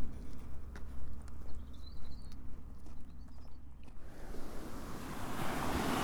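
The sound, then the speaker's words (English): Waves wash onto the sandy two-mile beach at Carlion Bay with a steady low rumble, swelling into a broad hiss of surf in the last seconds, while a faint whistling bird call drifts above early on. “I'm on Carlion Bay Beach. Which has a sandy 2 mile beach.”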